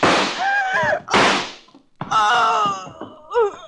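Three loud gunshots in a radio drama, each a sharp burst with a rough, decaying tail. The first two come about a second apart and the third follows after a short gap, with wavering tonal cries mixed in.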